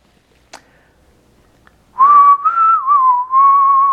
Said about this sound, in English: I'm just humming the, whistling the soap opera music. I forget which one that was. Was it Young and the Restless?